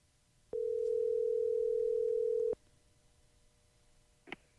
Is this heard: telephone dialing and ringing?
yes